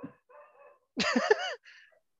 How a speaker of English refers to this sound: Calm down, dogs.